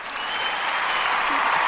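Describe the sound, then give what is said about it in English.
An applause sound effect played from a soundboard, steady dense clapping that holds at an even loud level for under two seconds with no talking over it. “I got my claps today.”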